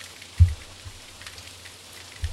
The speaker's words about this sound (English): I apologize if anybody can hear the rain out there, but it's coming down pretty hard now. It's a warm night, so we have the windows open in the studio, and all of a sudden the sky just opened up, so.